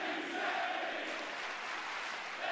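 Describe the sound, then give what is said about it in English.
A large wrestling crowd, including fans who had been chanting for Shinsuke Nakamura, chants "thank you" in unison, a loud, steady roar of many voices with rising vocal swells, filling the whole moment without pause. “Thank yous from the crowd.”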